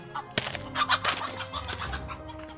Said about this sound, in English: Don't let these giant chickens out of the lab when you leave, okay?